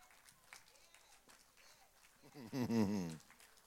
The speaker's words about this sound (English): What a miserable hand clap. But that's all right.